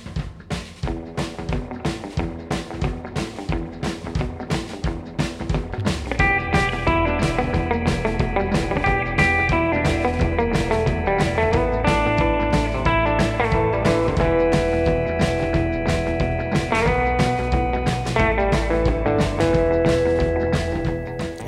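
A band's recorded track plays loud and full, with a steady driving drumbeat under distorted, sustained guitar chords that thicken after the opening seconds; no one speaks over it.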